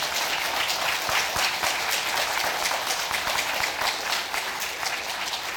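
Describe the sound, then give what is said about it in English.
Sustained applause from a standing crowd at a church worship service, a dense steady patter of many hands clapping at an even loudness for several seconds, with no voices standing out. “Let's stand and give them a round of applause.”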